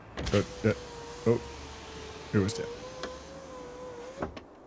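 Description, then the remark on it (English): A Corolla car's power window hums steadily as it goes up, its motor whine holding a level pitch that rises slightly near the end, while a person speaks briefly over it. “Oh, my window's up.”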